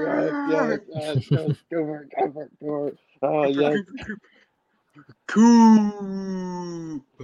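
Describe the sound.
Cooper, a pet dog, lets out a single drawn-out howl, loud, that holds a steady pitch for about two seconds. Voices talk in short bursts just before it.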